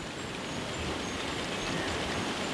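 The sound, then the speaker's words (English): Steady, dense rainfall hissing continuously, a broad even wash of sound with pattering texture throughout and no pauses. No voices are present. “It rained and rained and rained and rained.”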